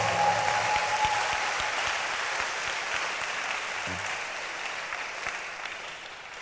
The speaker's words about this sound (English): Can you clap for my pastor?